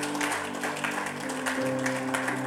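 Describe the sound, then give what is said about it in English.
A crowd gives the Lord a mighty clap of hands, a dense, steady burst of applause, with sustained keyboard or organ tones playing underneath throughout. “Give the Lord a mighty clap of hands.”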